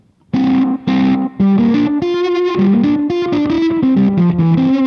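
A fuzz-distorted electric guitar, played through a Jesse Davey Kingtone Fuzz pedal, plays a loud melodic riff of thick, sustained notes, starting after a brief moment of silence and continuing without pause. Nobody speaks.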